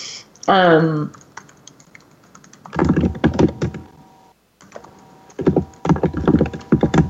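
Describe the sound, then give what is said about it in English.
Rapid clattering keystrokes on a computer keyboard come in two dense bursts separated by a short pause, fairly loud, after a brief voice-like sound near the start. “Terry, honey, can you mute yourself? I'm not sure what's going on here. We can hear you typing.”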